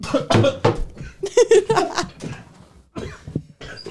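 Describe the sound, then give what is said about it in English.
A person coughs in a series of harsh, sputtering bursts after a sip of water went down the wrong pipe, pausing briefly before another round of rough coughs. “Down the wrong pipe?”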